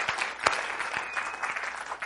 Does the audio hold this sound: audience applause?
yes